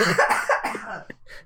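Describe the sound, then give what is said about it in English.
A short burst of harsh, rough coughing, fairly loud, with a couple of quick hacks in a row before it trails off. “There's that coughing.”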